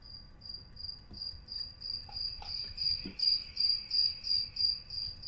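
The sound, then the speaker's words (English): Crickets chirp steadily in a fast, regular pulsing trill, high-pitched and continuous, with no voices present and a faint low background hum beneath. “Yes, that's right, those are crickets”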